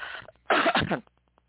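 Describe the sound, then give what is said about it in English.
One loud, harsh cough, said to come as grass starts to bloom, bursts out for about half a second after a soft throat-clearing rasp, then fades into quiet breathing with a few faint clicks. No one speaks. “Grass is starting to bloom, and I am coughing more.”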